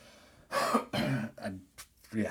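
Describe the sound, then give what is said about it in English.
A person coughs and clears their throat in several rough, raspy bursts, with short pauses between each hacking fit. “I just want to cough.”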